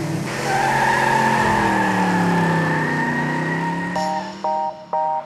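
A self-driving car glides past with a steady, rising-and-falling whine like squealing tires, then three short electronic beeps chirp at the end.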